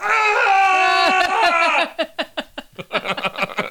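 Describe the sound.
A person gives a loud, sustained scream for a secret word, holding it for nearly two seconds, then it breaks into a quick run of choppy, rhythmic laughter bursts.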